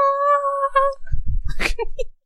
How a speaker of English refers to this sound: No, you're a happy cat. Look at me!